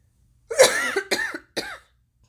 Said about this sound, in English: I'm gonna cough again.